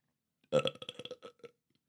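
A loud, close burp erupts with a strong onset and then rattles on in a rapid series of croaky pulses, fading out after about a second. No talking.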